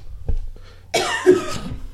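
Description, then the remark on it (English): A harsh cough from a person with a stuffed-up nose bursts out about halfway through, preceded by a faint short sniff or throat noise; no one speaks. “Really, it's my sniffles.”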